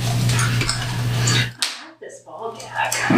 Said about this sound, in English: Yellow is one snap of your fingers. Red is two snaps of your fingers. Since you're not going to be able to talk anymore. Can you snap your fingers? There you go.